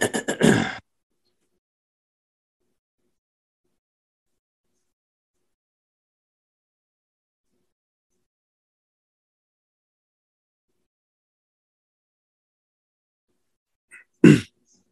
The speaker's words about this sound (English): Let me blow my nose before we come back in real quick.